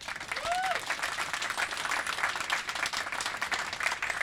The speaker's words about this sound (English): I'm really, really happy to have him here. Please give him a little quick round of applause.